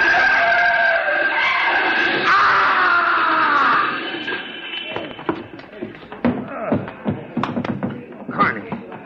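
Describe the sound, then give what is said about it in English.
Car tires shriek in a long, high, wavering skid for about four seconds as another car comes out of a side street, then a jumble of sharp banging and rattling crash impacts follows in irregular bursts, with no voices. “Car's coming out of that side street. Let him look out. You're going to hit!”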